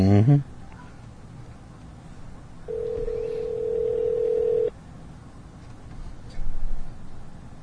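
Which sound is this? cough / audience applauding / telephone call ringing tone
telephone call ringing tone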